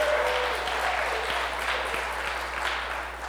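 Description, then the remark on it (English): A crowd applauds with steady, dense clapping that holds at an even level for a few seconds and eases off slightly toward the end. “So seriously though, how about just a little bit of applause for the guys that keep us in the coffee all morning, right?”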